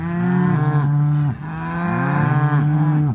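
Several cattle moo loudly and close by, long drawn-out lowing calls that overlap one another in two sustained waves, with no talking.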